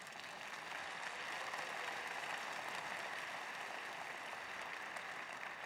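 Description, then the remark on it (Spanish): An audience claps steadily, a dense wash of many hands applauding at an even loudness for several seconds, with no voices heard over it. “Si Cristo ha transformado, alguno de ustedes levanten un fuerte aplauso.”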